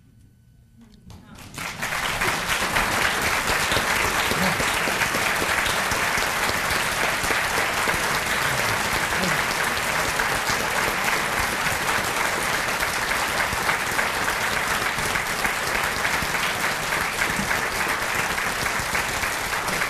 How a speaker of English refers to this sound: but we also are applauding